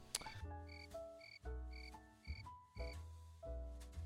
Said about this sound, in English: Okay. We'll add crickets. No worries. Is the crickets sound effect still on there? you can leave that. Just for shame.